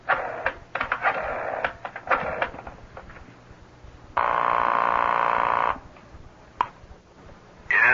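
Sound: telephone being dialed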